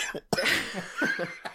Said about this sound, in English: You cough laugh. I'm sick, so I can't really laugh as much as I normally want to.